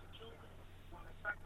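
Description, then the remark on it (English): Low, steady hum of a payphone line in Moosonee, Ontario, with faint crackle, then a short, bright electronic tone near the end. No one speaks. “you're calling me on a payphone”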